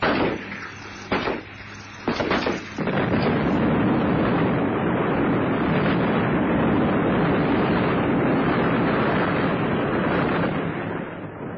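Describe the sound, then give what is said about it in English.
A helicopter explodes after shots are fired into its fuel tank, its wreckage crashing into the jungle: a few sharp cracks and bangs give way to a massive blast that swells into a loud, sustained, rumbling roar, slowly fading over several seconds with no voices. “The helicopter exploded in a bright ball of flame, and what was left crashed into the jungle for hundreds of yards all around.”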